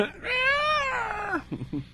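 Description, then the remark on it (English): A cat lets out a loud, drawn-out screech lasting over a second, its pitch rising then sliding down, followed by a couple of short, lower yelps. “You know it's right when you hear the screech of the cat.”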